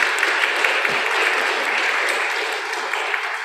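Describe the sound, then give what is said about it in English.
A church audience claps steadily to thank all who read and sang in the service, a dense, even wash of applause that holds at a fairly loud level throughout, with no voices breaking through. “From season to season, as we journey together as the people of God, would you thank with a round of applause all who participated in reading and singing today?”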